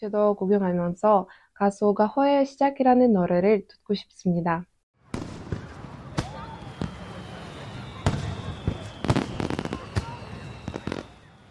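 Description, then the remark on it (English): A person talks at first, then fireworks at the Seoul International Fireworks Festival in Yeouido Hangang Park, Seoul, Korea take over: repeated sharp bangs and crackling bursts at irregular intervals over a steady wash of outdoor crowd noise. “I see that this is Yeouido Hangang Park where the famous Seoul International Fireworks Festival is held.”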